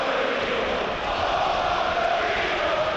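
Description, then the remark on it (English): A large football stadium crowd at a Liverpool match roars and jeers in a steady, loud wash of many voices, holding a continuous swell for the full few seconds with no individual speech standing out. “Crowd will have their say.”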